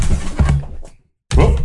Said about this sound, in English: Cat tried to knock my light over.